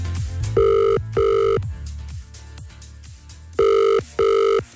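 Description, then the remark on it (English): A phone ringback tone sounds through the line on an outgoing call, two paired rings, a pause, then two more, clear and steady over faint background music. “let's make a phone call to one lucky girl, and hopefully it's Lauren. She's going to answer the phone.”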